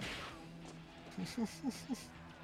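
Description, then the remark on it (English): Four punchy film-fight impacts land in quick, slightly uneven succession, each a short thudding whack with a crisp snap, standing out over a low, steady background hum. “I don't hate some of the punches.”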